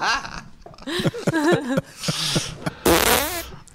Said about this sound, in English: No, I don't put my finger in there when I fart.